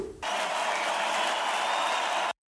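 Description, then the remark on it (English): A dense burst of applause, many hands clapping at once in a steady, crowd-like roar that starts abruptly, holds at an even loudness for about two seconds, then cuts off sharply. “Give a round of applause”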